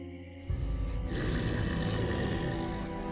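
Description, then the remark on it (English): A creature's raspy, grating breathing, a rough, growling rasp that swells in after a brief quieter moment and continues steadily and loudly, with no voices. “Soon the enigma's breathing became raspy and grating.”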